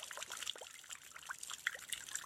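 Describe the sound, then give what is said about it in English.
Rainwater dripping steadily from a roof into a bucket during a rainstorm, quick irregular plinks over a constant hiss of falling rain, fairly soft, with no voices. “This is a recording of water dripping into a bucket from a roof during a rainstorm.”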